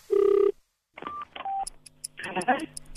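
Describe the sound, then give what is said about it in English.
Telephone keypad dialing tones as a random number is called: a longer opening beep followed by two short touch-tone beeps, clear, then muffled line noise with faint voice-like sounds. “Random city, random number. 1 minute to keep them on the line.”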